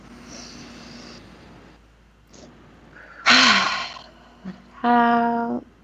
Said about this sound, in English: I hope you could all hear the bear like voice in that yawn.